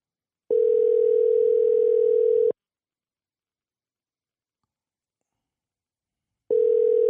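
A steady, mid-pitched telephone tone sounds while a call is being placed: about two seconds of tone, four seconds of silence, then the tone starting again. No voices are heard.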